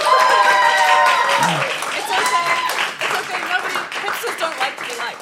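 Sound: studio audience clapping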